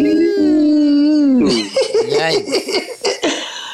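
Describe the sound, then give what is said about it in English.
A dog howls in one long, steady, wavering note for over a second, then breaks into a rapid string of choppy, yelping howl fragments. Loud, with no talking. “Oh my God, dog.”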